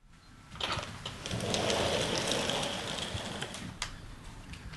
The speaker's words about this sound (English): you've just pulled back this pair of sliding doors onto this incredibly long terrace, and we really do feel like we're very perched up high here.